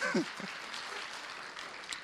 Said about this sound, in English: if you're going to clap, let's clap. All right, come on. Let's do it properly.